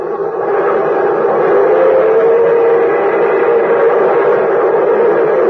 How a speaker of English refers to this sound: And there goes the champion. There goes the Milwaukee Railroad's new great streamlined locomotive. An orange and silver bullet streaking across the country on the fast Chicago to Minneapolis run.